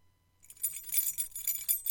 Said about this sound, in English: Jingling their house keys to tell the regime that it was time to go home.